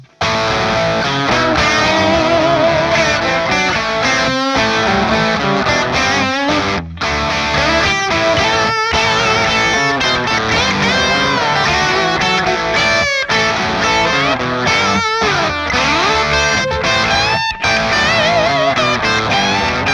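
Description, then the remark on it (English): A loud, overdriven electric guitar plays a busy lead solo line alone through a Marshall amplifier pushed harder by a drive pedal and a Vintage 30 cabinet emulation, with a short slapback echo from a Fulltone tube tape echo trailing the picked notes and brief gaps between phrases. “I also ran that signal to a full tone tube tape echo to get the slapback sound.”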